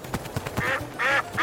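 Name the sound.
duck quacking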